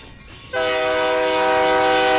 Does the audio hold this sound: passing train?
yes